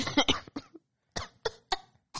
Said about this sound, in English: That's why you started coughing.